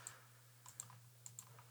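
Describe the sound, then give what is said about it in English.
A handful of crisp computer mouse clicks, some coming in quick pairs, over a steady low electrical hum, with no one speaking. “Whoa, I'm clicking on all these fucking things.”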